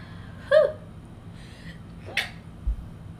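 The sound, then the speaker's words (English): A brief sneeze: a short voiced catch of breath, a faint pause, then a sharp hissing burst of air, with no talking around it. “No, I gotta sneeze now.”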